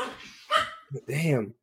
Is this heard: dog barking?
yes